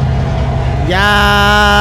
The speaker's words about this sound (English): Oh, wait. Here's the train. Whoop, whoop.